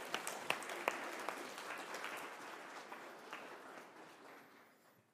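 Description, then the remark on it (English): A crowd breaks into steady applause for a young family at a baby dedication, dense overlapping claps with a few sharper ones standing out early, holding at a moderate level before gradually tapering off. “Give them a round of applause just for looking so good.”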